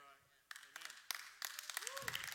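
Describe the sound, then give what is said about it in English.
Scattered, sparse handclaps from a church audience, a few irregular claps after a brief quiet start, mixed with low murmured voices calling out amens. “See how low the amens are. Because, and the claps are, because we feel sometimes, because we all in our feelings that we have a right to attack leaders.”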